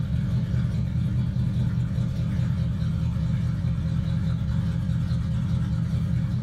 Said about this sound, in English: Let's see, I also had this one. It's, this is an old car.